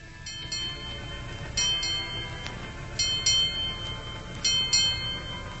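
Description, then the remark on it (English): A ship's bell rings eight bells to mark the end of the long night watch, struck in four evenly spaced pairs of clear metallic tones. Each pair rings out over a steady low rumble, with no voices. “Eight bells. That was the end of the long night watch, and soon it would be morning.”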